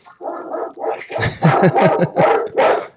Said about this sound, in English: Sounds like a. That's one dog, by the way. Oh, wow. It sounded like a pack of wolves.